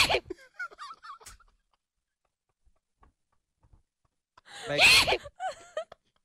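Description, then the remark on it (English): A loud, exaggerated sneeze erupts after a brief quiet stretch, preceded by a shorter, strained vocal burst and followed by a rough, wheezy tail. “That can't be a real sneeze.”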